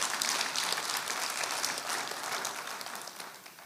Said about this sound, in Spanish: Dele al Señor un aplauso, dele al Señor un aplauso.